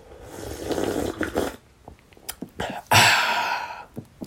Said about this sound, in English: And I'm going to take a sip of my chamomile tea now.